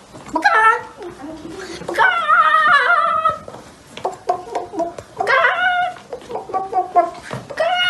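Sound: imitated chicken clucking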